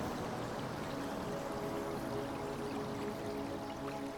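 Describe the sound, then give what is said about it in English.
Soft, steady rush of flowing water heard from a distance, a continuous faint wash with no pauses and no voices. “Now you start to hear the sound of water in the distance.”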